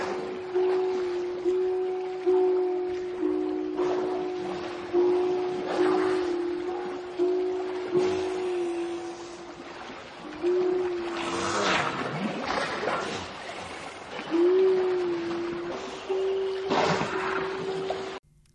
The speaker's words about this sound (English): and here we have sowing the sound, your wild oats in the Arctic Sea. The sound of the Pacific walrus.